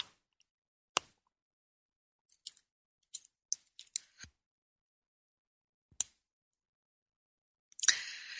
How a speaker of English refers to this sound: Oh, I need another sip of my espresso here.